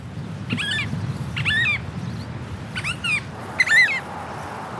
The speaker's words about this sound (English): It's a beautiful oyster catcher just next to the road. It's those bird sounds that I've really missed being away from New Zealand.